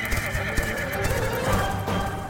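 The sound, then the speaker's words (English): A horse whinnies loudly, a long quavering neigh with hooves clip-clopping underneath, lasting a couple of seconds with no one speaking. “But finally, after multiple attempts, Poseidon succeeded in making a horse to fill the Greek plains.”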